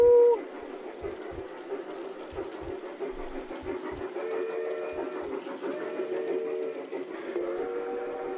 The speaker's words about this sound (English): Because you're boarding the train to Busan! Choo-choo!